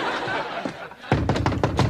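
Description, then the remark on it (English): After a stretch of muffled, hissy background noise, a door is slammed shut in the face of a woman selling makeup door-to-door, a loud thud, followed by several quick, rhythmic bursts of sound. “Edie doing door-to-door trying to sell makeup and getting doors slammed in her face”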